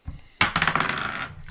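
Dice are thrown for an investigation check in a tabletop role-playing game, clattering across a hard tabletop in a quick burst of tumbling rattles, loud, settling after about a second, followed by a brief faint tap.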